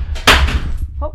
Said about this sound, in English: Oh. The dog just knocked over the... Yeah. The dog just broke something. Just broke the candle.